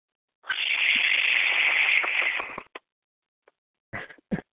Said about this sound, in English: If I had a clapper, I'd give her applause.